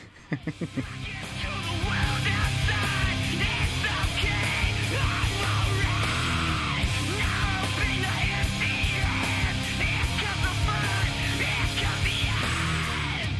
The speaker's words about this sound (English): The bridge is what saves it for me. Well, not saves it. Oh, where he really starts screaming on it.